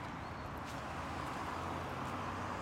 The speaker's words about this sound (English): Like, I live over here. Look at how many cars. Look at how many cars are like passing along. It's nearly impossible.